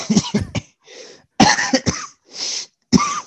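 A close, loud coughing fit: several harsh coughs come in clusters, separated by raspy, wheezing intakes of breath. No one speaks.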